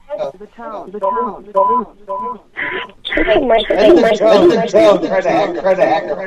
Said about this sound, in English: Skype on. Yeah, I know. They want Skype on. They like the echo. But I muted The echo's awesome. I should turn the phone off. Yeah, just Skype. It's free. They muted us. Oh. Echo. Can you still hear the echo?